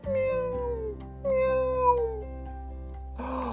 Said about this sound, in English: Meow, meow. Oh no, I don't think she can get down from there.